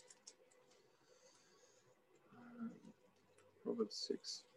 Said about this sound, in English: Let me just flip the pages here.